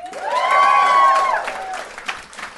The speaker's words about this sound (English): Give me a round of applause if you feel good to be here.